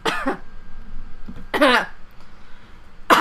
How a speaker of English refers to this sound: Cough. Well, I hope that wasn't too loud for. Edit that out, fucker. Okay. Headphone users, I'm sorry.